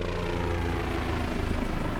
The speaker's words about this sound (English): It was a low-flying army helicopter.